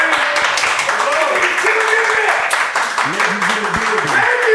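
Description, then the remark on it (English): A crowd claps steadily in a dense, continuous patter, with voices talking and calling out over the applause throughout. “Everybody start clapping right now.”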